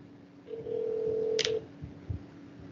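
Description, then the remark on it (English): A single steady ringback tone on a phone line as a call is placed to a mother, lasting about a second, with a brief click near its end and faint thumps afterward. No one speaks. “I'll even get mom on here. She hasn't been called yet.”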